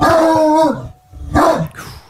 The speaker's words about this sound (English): Sounds heavy, that dog. Yeah. In the 18th century, this hound was popular with the upper class for sport, as few other dogs could bring down a wild boar.